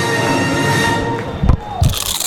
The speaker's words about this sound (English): You know that sound anywhere. It's the crisp crunch of that first nacho chip.